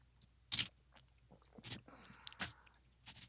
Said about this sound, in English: All right, taking a sip.